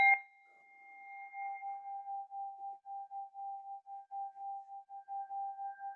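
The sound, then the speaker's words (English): A bell is struck once and rings on, its clear tone sustaining for several seconds with a steady pulsing waver and no voices. “Okay, I'm gonna ring the bell again this time because we're so cute.”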